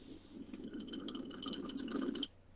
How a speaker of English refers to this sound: Nice. That was a good hearty sip.